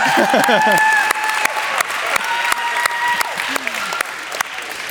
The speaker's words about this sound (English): Someone's clapping and then this girl's running by.